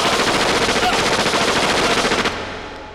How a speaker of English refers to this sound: That's a fucking crazy ass firing squad.